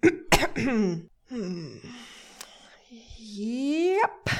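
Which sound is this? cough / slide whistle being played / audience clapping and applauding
cough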